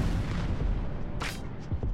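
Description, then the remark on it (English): A deep, continuous rumbling roar as two 500-foot smokestacks of the Widow's Creek coal-fired power plant near Stevenson are demolished and tumble to the ground on a warm autumn morning in 2019, with heavy low-end thunder throughout and a sharp crackling burst of debris midway. “On a warm autumn morning, two 500-foot smokestacks came tumbling to the ground.”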